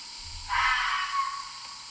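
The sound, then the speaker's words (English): A fox vixen lets out one harsh, raspy scream that starts abruptly and holds for over a second, hoarse and breathy with a hissing edge, with no voices around it. “I added it earlier, but just to talk about this noise a little bit, this is called the Vixen Scream.”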